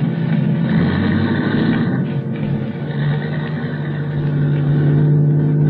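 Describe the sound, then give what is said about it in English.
A car engine rumbles steadily, a low continuous drone that shifts slightly in pitch as the car starts off after someone walks over and gets in, then keeps driving. “I could hear his steps coming over to the car, and then getting in, and then we were starting off.”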